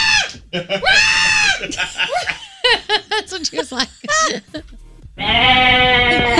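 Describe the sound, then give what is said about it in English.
A person loudly imitates the shrill, goat-like screaming of a woman in several wavering, bleating bursts, with a short spoken line and some giggling between the cries. “Maybe it was a goat. It was that high pitch.”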